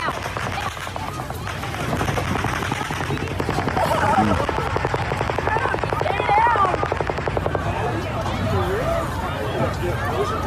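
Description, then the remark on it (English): Rapid bursts of automatic gunfire from Stephen Paddock's shooting, heard in recorded footage, rattle on for several seconds in a fast, steady stream of sharp cracks, loud over a background of crowd noise and scattered voices. “Just the horrific sounds of what started this whole shooting event last night, from Stephen Paddock.”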